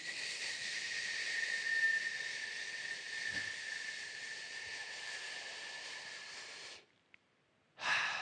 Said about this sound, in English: When we're breathing in, just for practice sake, breathe like you're breathing through a straw. Like that, okay?